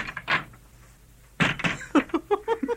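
A heavy door in King Nebuchadnezzar's court in Babylon is unlatched and swung open by a guard: a brief knock, a pause, then a sharp clunk followed by a run of creaking, rhythmic groans, moderately loud.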